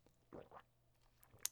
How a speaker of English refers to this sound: Now that the business is taken care of, I can take a little sip of my Mai Tai. Oh, hold on.